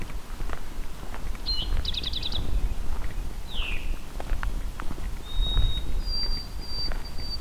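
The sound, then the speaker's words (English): A white-throated sparrow sings clear, pure whistled notes, a steady tone stepping up to a higher sustained one. Other brief bird chirps come earlier over outdoor rumble and scuffing footsteps. “There's a white-throated sparrow singing.”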